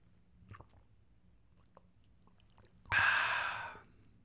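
A quiet sip of coffee: a few faint mouth clicks, then a single airy slurp lasting just under a second, with no talking.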